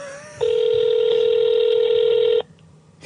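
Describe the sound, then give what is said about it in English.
A foreign phone ringing tone on an international call to a phone abroad: one long, steady electronic beep lasting about two seconds, clear and fairly loud over a faint line hiss, with no talking. “That's an abroad phone.”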